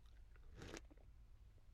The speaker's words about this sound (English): A sip of my coffee.